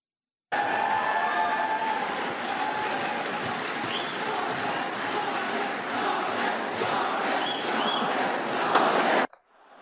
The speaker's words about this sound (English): But do we have a clip of the crowd from the debate? Oh, man, that is actually crazy.